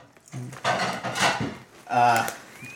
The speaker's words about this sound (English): And the door closes.